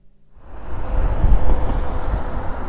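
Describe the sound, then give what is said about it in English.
Blustery outdoor wind rushing and buffeting, rising from quiet to a steady roar, with a broad watery rumble underneath and no voices, on Waterloo Bridge over the River Thames on a sunny morning. “I'm on Waterloo Bridge over the River Thames, and behind me is the city.”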